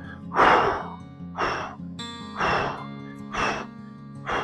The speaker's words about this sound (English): And you're just going, I want your elbows to go towards your knees. You can hear me breathing out every time I squeeze.